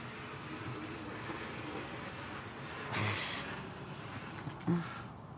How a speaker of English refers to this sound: Car's dragging a little something on the underbelly.